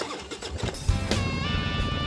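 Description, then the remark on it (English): A motorcycle engine sputters through a few quick kicks, then catches with a sudden low thump and roars into a steady, rising rev, loud with no voices. “Kickstart that engine and roll thunder with the pack.”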